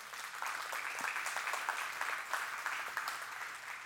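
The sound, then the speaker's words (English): A church audience claps steadily, a dense, crackling wash of many hands applauding at an even level for the full few seconds, with no voices standing out. “And yeah, go ahead and clap, man.”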